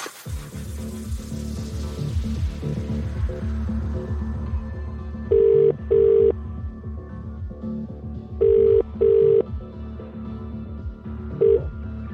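A phone line rings out with the British double-burr ringback tone of an outgoing call made to play the Cash Hits jackpot game, two full paired rings and the start of a third, sitting clearly over a busy music bed with no voices.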